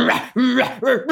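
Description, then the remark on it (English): A person voices a dog named Wolf, giving three or four rough, growly barks in quick succession, loud, with no other talking. “Like, you're the alpha dog, and Wolf is like emboldened by your protection and is growling and barking.”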